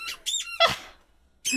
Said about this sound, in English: Oh, good luck with the that, squeaks. If we can hear it in Discord, it's going to sound terrible in that? The recording. Thanks. Yeah. Here you go, Nebby, have a squeaky ball.